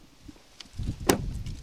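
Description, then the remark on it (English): A white Chevy SUV door shuts with a single sharp thud about two-thirds of the way through as a man hops out on a farm on a windy morning, over a steady low rumble like wind buffeting outdoors, with a few faint clicks before it. “He hops out of his white Chevy SUV and walks toward a row of trees.”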